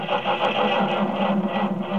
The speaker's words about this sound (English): Our hero, Jim Brown, is in a frantic rush to get to his office. He leaps into his car, tries to start it.